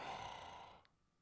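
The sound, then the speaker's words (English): One heavy, hissing exhale from a film character standing still, breathy and low in volume, that rushes out and fades away in under a second, leaving near-silence. No one speaks. “And just the ominous right of him standing there breathing.”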